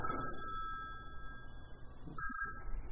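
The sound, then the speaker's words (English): A phone keeps going off with a steady, shrill electronic tone that rings unbroken through the whole stretch, briefly wavering near the end, over a low rumbling background; three attempts to shut it off failed to stop it. “Here I go again at the phone. This happened the other day too. I tried to shut it off 3 times and it wouldn't stop.”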